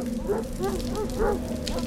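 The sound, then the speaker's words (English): Dogs howl in the background, several rising and falling wails overlapping one after another, moderately faint beneath steady falling rain. “Howls in the background increase.”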